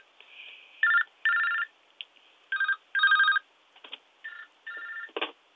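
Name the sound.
phone ringing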